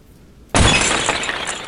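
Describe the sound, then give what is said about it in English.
A sudden loud glass-like shatter of an energy field, struck by a creature's arms, bursts in after a moment of quiet, its bright crackling debris ringing out and slowly tapering off. No voices. “And then when the creature slams against its arms, this time with five of them hitting different points of the energy, you see the cracks spread and the field of energy shatters.”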